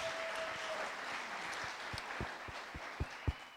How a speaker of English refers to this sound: Let's give that a round of applause for Aspen Entrepreneurs.